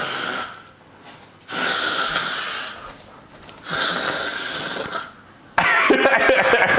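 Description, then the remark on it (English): Someone with a congested throat forces out three long, raspy, phlegm-filled exhalations, then a louder gravelly growl, imitating breathing fire. “That's my all my phlegm. All right, see that phlegm in there?”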